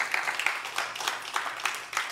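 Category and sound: crowd, audience clapping hands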